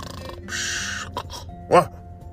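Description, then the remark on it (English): A voice imitates a sleeping cheetah snoring up close: a long, raspy breathy inhale, a couple of short huffs, then a brief groaning, throaty exhale. “Yeah, sometimes when cheetahs are sleeping, they snore.”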